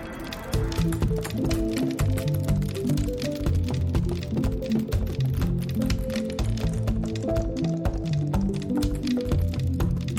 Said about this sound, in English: Intro of bubbles. I think it's a ping pong ball sound.